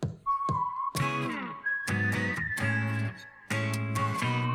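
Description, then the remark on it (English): A clear, sustained whistle holds long steady notes, shifting pitch up and then back down, over loud, dense rhythmic music with strong low-end beats. No one speaks. “Yeah, I mean, and he's whistling.”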